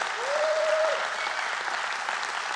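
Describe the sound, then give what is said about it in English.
A church audience breaks into steady applause for Jesus during a morning service, dense overlapping hand claps at an even loudness throughout, with a single rising whoop cutting through briefly at the start. “Give Jesus a hand clap for that.”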